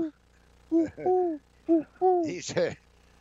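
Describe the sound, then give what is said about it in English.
A person imitates an owl with a series of about five short, voiced hooting calls, rising and falling in pitch, the last ending in a breathy, raspier burst; fairly loud. “that's a great owl.”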